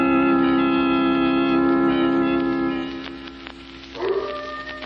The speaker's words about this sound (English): Not a sound anywhere, Lamont, except that coyote off in the hills.